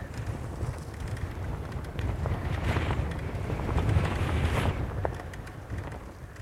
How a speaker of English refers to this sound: Oof. Windy.